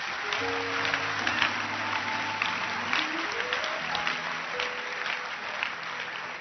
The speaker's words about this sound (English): Oh, I'm happy with your hand clap. Clap your hands here.